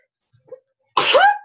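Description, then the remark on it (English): A single loud sneeze bursts out suddenly after a brief quiet intake of breath, with a sharp noisy onset trailing into a voiced tail. “I feel like I'm going to sneeze.”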